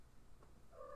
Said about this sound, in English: Hey, you guys want to talk to my cat? She's in heat right now, so she wants to talk.